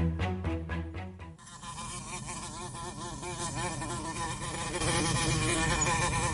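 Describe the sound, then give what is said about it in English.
Many wasps buzz outdoors, a dense, continuous drone with wavering pitch as several insects circle, growing slightly louder toward the end, preceded by a few brief rhythmic pulses. “Okay, there are so many wasps out here.”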